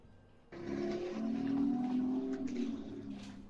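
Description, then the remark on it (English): A car engine revs loudly as it drives by at the ocean, its pitch climbing steadily and holding strong for a few seconds before easing slightly, with no voices present. “a car drives by at the ocean.”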